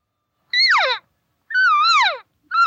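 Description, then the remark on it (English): Two loud, nasal mews from a mature cow elk, each rising slightly then sliding down in pitch, with a short pause between, and a third call just starting at the end. “It's a more mature sound, okay?”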